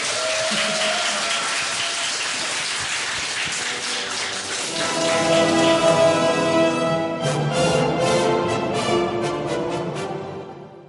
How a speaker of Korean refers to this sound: 뭐 박수는 돈 드는 거 아니니까요. 아, 민석 의원님 다시 한번 뜨거운 박수.